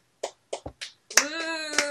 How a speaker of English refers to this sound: Slow clap! Okay. They're really not clapping. They're high-fiving each other incredibly badly.